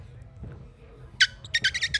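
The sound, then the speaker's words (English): A person imitates dolphin noises with a sharp, high squeal followed by a quick run of about six squeaky chirps, fairly loud over a low background rumble. “I can make very, like, I'm told very accurate dolphin noises.”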